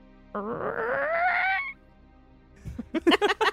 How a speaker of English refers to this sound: Creaky wooden back door.